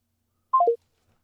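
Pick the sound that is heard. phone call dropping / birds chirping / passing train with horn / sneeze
phone call dropping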